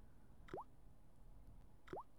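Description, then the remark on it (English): Two small water drips plop down about a second and a half apart onto plaster of Paris in a soap mold of a key, each a quick rising bloop, soft, over a faint low background hum with no talking. “So now we just need to put some water on it.”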